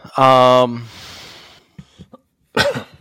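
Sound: cough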